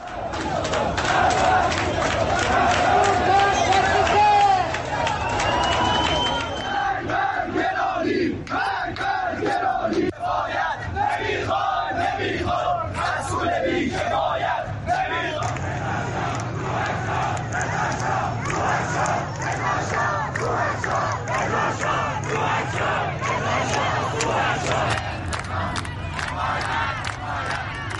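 A large protest crowd shouts and chants loudly and continuously at street protests over economic grievances and soaring currency prices, voices overlapping in a dense roar with rhythmic bursts of raised cries throughout.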